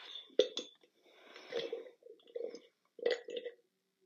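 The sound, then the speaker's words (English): Someone drinking water during a water break, in a few gulps, with sharp wet swallowing clicks and soft breathy gasps between sips, fairly quiet overall, with short pauses of silence. “Okay, that sounds really weird, drinking next to this.”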